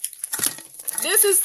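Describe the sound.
Brief rustling and crinkling of the pages of a paper diary being handled, followed by a person beginning to speak over the last of the handling noise.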